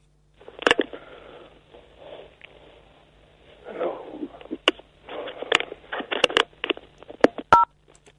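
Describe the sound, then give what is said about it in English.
Telephone tones from a caller who keeps phoning come through as an irregular run of short beeps and sharp clicks over a muffled, rustling line noise, moderately loud, with no one speaking. “Well, he's still phoning now.”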